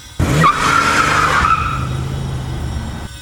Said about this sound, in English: but he turned the keys and ripped that car out of Lover's Lane with the tires screeching.